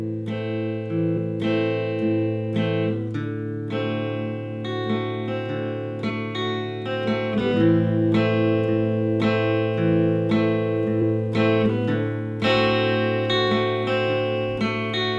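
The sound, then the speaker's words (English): A stringed instrument is tuned before a song in a live radio performance, with repeated plucked and strummed notes ringing out and sustaining while the pitch is adjusted between strikes. No one speaks. “Go ahead and get tuned up.”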